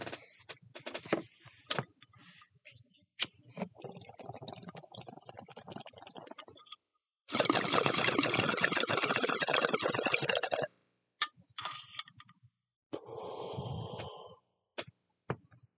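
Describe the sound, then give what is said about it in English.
Sharp scattered clicks of a lighter being struck, then several seconds of loud, steady gurgling of bong water as someone smokes weed, followed by a few more lighter clicks and a shorter burst of bubbling. No one speaks. “So if you hear me and you hear click, click or bubbles, I'm an adult and I smoke weed like you drink beer.”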